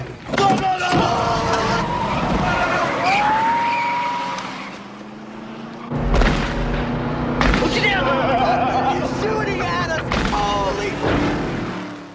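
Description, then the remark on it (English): A car roars off at speed as a man shoots at it, its engine loud as the tires squeal, with a few sharp bangs cutting through the steady rush of the engine. “So they take off.”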